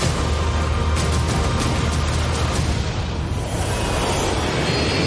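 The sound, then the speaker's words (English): A loud, dense roar of aircraft engines with deep rumbling and a few sharp bursts early on, from a big airplane stunt in a movie trailer. The roar stays continuous, with no talking. “The big plane airplane stunt.”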